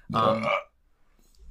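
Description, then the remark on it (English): A single loud, throaty burp lasting about half a second, rumbling and voiced, followed by near silence. “You can just breathe away a burp.”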